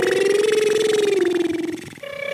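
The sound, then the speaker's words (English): A voice imitates the Jetsons' flying car from the cartoon The Jetsons with a steady, fluttery buzzing hum that drifts slightly lower in pitch for about two seconds, then breaks into a brief higher tone. “There goes the Jetson's car.”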